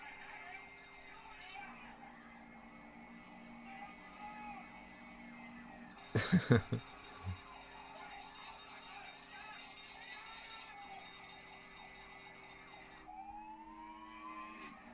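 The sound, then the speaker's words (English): An emergency vehicle siren wails steadily throughout, fairly loud, broken midway by a short cluster of thuds, then sweeping upward again near the end. “On with the siren again.”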